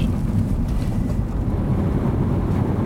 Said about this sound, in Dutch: Ik kan me ook voorstellen dat wij nu hier rijden en dat mensen zeg maar denken... Wat doen zij hier? Ja. Ik ken deze auto niet.